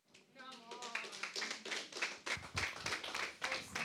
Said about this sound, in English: Come on, you can clap. Let's give the Lord a hand.